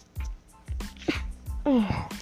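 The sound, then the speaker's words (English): Several quick, breathy gasping intakes build up before a loud, voiced sneeze bursts out near the end, with no talking around it. “Oh my God, I'm going to sneeze.”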